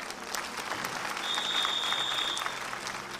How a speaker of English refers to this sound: I give this woman a round of applause, man.